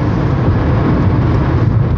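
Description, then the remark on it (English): A steady, loud low rumble of a car moving through traffic past road construction on a Sunday, continuous road and engine noise filling the whole stretch with no voices. “Well, thankfully, it seems like we're not actually doing anything, so traffic's still moving.”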